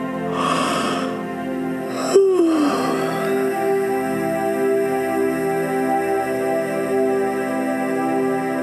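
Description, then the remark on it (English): A breathy inhale followed by a drawn-out voiced yawn from a girl rolling over in bed, sliding down in pitch, fairly loud, over a soft, steady musical drone. “She yawned.”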